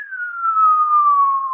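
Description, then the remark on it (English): A voice imitates a bird heard during the dawn chorus at a reserve, whose call sounded like a Second World War bomb dropped from an aeroplane: one loud, pure whistled tone sliding slowly downward in pitch for about a second and a half, with nothing else audible. “It sounded like the bird was making the noise of a Second World War bomb being dropped from an aeroplane.”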